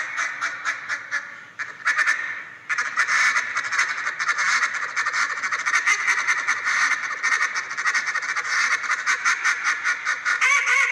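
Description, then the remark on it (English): A competition duck call blown in rapid, continuous bursts of high, raspy quacking notes, loud, running almost nonstop with brief pauses between sequences, going from a power chatter into high duck notes. “That's that high duck right there.”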